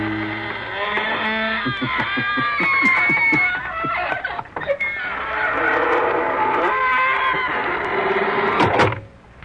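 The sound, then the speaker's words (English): A door creaks open slowly in a long, drawn-out squeal that wavers up and down in pitch for several seconds, loud, ending with a brief sharp thud. “Folks, here we are outside the squeaking door.”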